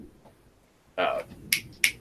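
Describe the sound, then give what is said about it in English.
A brief muffled burst of sound, then two crisp, sharp finger snaps about a third of a second apart, bright and clicky against a quiet background, as someone tries to recall an actor's name. “Snap your fingers at us like we're going to give you the answer.”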